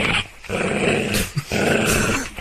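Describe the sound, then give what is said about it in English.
A dog growls loudly in low, rumbling bursts, with brief breaks between them and a short sharp snarl in the middle. “It's okay, big dog.”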